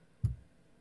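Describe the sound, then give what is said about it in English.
A single soft, dull clack as dice, rolled for a stealth check in a game, drop onto a tabletop, brief, with no rattle afterward and quiet room tone around it. “Come on, dice. New dice.”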